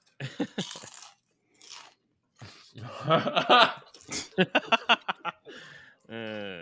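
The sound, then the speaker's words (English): Loud crunching of Ruffles ridged potato chips being chewed, a series of sharp irregular bites and crackles, with brief voice sounds and a short hum toward the end. “Yeah, I got more lasagna, and I also got some like crunchy ass like Ruffles.”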